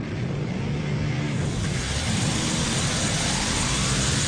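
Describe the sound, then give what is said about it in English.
A heavy chopper motorcycle engine rumbles loudly and steadily for a few seconds as it rides away, a deep continuous roar with a hissing edge and no voices over it. “Or what about if he just came out on a big chopper, she gets on the back and yells, fuck you, Hollywood, and off they go.”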